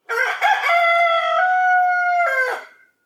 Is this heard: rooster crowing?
yes